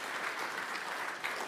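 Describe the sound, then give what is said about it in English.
A crowd applauds steadily as a small group leader comes up to talk about group life, a dense wash of many hands clapping at once, sustained with no single claps standing out. “Let's give him a round of applause as he comes up here to talk about group life.”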